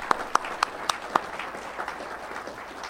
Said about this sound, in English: So again, maybe a round of applause and appreciation.